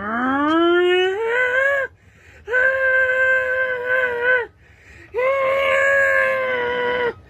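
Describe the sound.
A voice imitates a tornado siren with three long, wailing tones, the first sliding up in pitch, each held steady before cutting off, separated by short pauses.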